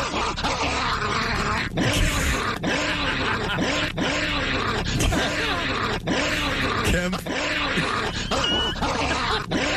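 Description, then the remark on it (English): A dog growls and barks loudly in a steady stream of rough snarls and gruff yaps that continue with few pauses for the whole stretch. “Down, boy! Down!”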